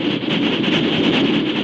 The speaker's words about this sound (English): While the Lone Ranger rode out of the west, with Tonto following fully half a day behind, a fast train roared from the east.